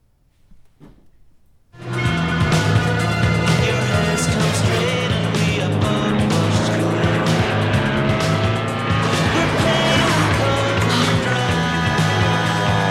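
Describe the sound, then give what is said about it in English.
After a brief quiet moment, a loud aircraft engine roars in abruptly and holds a steady, droning, buzzing tone as a plane flies low overhead, buzzing a tower. No one speaks. “So the plane actually flew over and Jaws got distracted by, oh, look, a plane. He buzzed the tower.”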